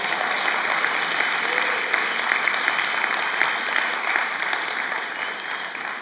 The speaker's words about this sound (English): Come on, let's just clap our hands to the Lord this morning.